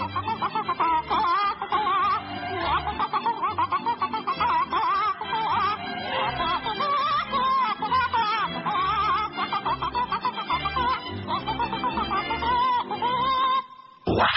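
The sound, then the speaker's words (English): A person up on a desk pretending to be a chicken clucks and squawks almost nonstop for about fourteen seconds, loud, with choppy bursts of bird-like cackling and hints of laughter mixed in. “Now get up on my desk and pretend you're a chicken again.”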